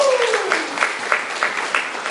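A crowd claps in a steady, dense round of applause, many hands patting at once in a continuous crackling wash, moderately loud and holding level throughout.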